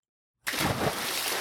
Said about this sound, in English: It was so loud that it startled Petunia, and she lost her balance and splashed right into the water.